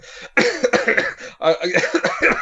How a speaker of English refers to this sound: To which I started to cough and then had to leave the room.